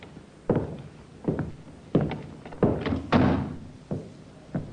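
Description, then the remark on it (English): A sergeant tries and opens the unlocked door of Colonel Reed's place of business, a series of hollow thunks and knocks spaced roughly half a second apart, some louder with a short rattle, and no voices. “The sergeant tried the door. Not locked, sir.”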